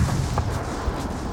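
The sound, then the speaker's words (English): Rumbling bomb explosions and scattered gunfire sound over a dense low-frequency roar, with a few sharper cracks standing out briefly, during the US war on Panama on a clear, starry evening. No one speaks. “The sound of bombs, the sound of gunfire.”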